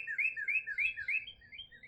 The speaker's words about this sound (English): There's two male cardinals defining their territory, calling out to each other while I watch the chipping sparrow just go away at the tube feeder.